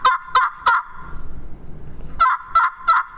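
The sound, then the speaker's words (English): A tracker turkey gobble call, cupped in the hand to change its resonance, is blown, giving two loud bursts of three quick, rattling throaty notes each, separated by a short pause filled with low breathy rumble. No one talks. “Now, this tracker also got a little bit of Jake stuff in it.”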